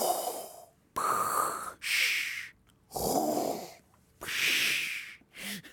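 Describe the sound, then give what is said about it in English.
A voice imitates Darth Vader's heavy mechanical respirator breathing with an added 'sh' at the end, heard over Zoom, alternating raspy inhales with hissing 'shh' exhales, about two and a half slow cycles, fairly loud with no talking. “Okay, well, I did Darth Vader's breathing, but with an SH at the end of it.”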